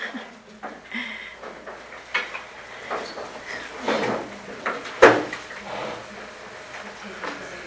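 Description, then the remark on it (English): A door opens as latecoming women come in, amid scattered clatter and shuffling, with one sharp knock-like clack partway through, while faint murmuring voices carry on in the background. “I'll let these ladies get in the door.”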